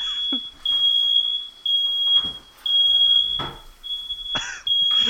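A smoke alarm shrieks in repeated high-pitched beeps with brief gaps between them, loud and close, while faint rustling and movement noises sound underneath.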